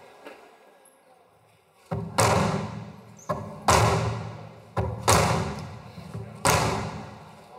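A hammer strikes a mural on a hard wall surface in a series of loud, sharp blows, about half a dozen, spaced irregularly with ringing decays after a quiet opening, mimicking the sound of gunshots.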